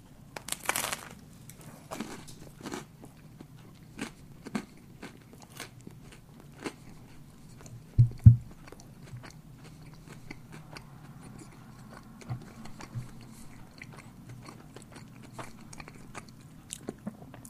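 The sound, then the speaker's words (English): A bite into a Tim Hortons donut topped with Fruit Loops cereal, followed by steady, crisp chewing crunches repeating for several seconds, loud with no talking. “Let me take a bigger bite, try and get a few more Fruit Loops in there.”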